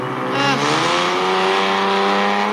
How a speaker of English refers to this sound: Motorbikes. We're not that, actually, while it looks like I'm in the middle of the woods here, Broadway is right over there. So you do hear some traffic, not so much when you get further, a little bit further in.